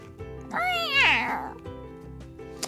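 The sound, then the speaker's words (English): A kitten lets out one loud, drawn-out screech that rises and then falls away as it touches water and jumps away, over a low steady background hum. “But the kitten had other ideas. The moment she touched the water, she jumped away with a screech.”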